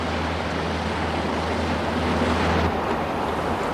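A motor cruiser's engine drones low and steady over a loud wash of water and wind as it turns a corner of a fjord and heads straight for a small boat, with no voices; the motor hum drops out shortly before the end, leaving only rushing water.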